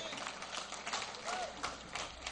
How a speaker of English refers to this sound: And those applause are because you are here with us.